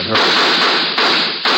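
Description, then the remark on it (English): Rapid, loud crackling bursts of Chinese firecrackers set off by a couple of kids right outside a window, a dense sputtering string with fresh sharp volleys breaking out twice, no voices. “A couple of kids shooting off Chinese firecrackers.”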